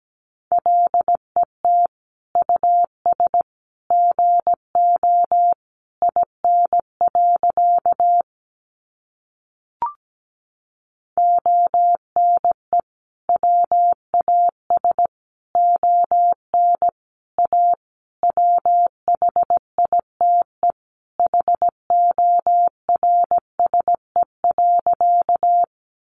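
Morse code sent at about 17 words per minute: a clean, mid-pitched tone keyed in quick dots and dashes, steady and unbroken except for a short pause partway through.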